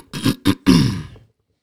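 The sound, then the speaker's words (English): A loud throat clearing: two quick rough rasps followed by a longer, gravelly growl that trails off, with no talking around it. “Let me clear my throat.”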